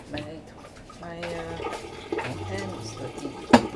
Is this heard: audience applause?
no